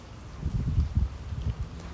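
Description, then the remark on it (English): Rain falling outdoors as a soft, steady wash of noise, with irregular low rumbling thumps running underneath. No one speaks. “So I thought you all would appreciate it if you all could hear the rain sounds like I can.”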